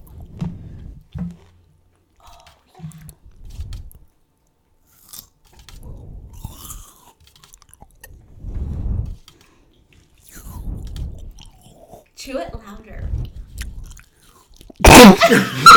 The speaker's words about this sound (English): Chew it louder. Guys, stop. You can't do that. You can't do that. Yeah, you can't chew loud. You can't chew loud. You're gonna hurt people's ears.